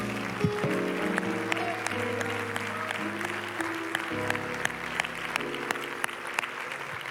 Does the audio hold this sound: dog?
no